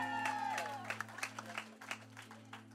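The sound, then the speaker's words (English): A crowd at a water baptism claps and cheers as the baptized person comes up out of the water, opening with a high whooping cry before scattered, uneven applause carries on over a steady low electrical hum, moderately quiet. “And then they lean him back all the way under the water, and then he comes up, and this is where the crowd goes crazy.”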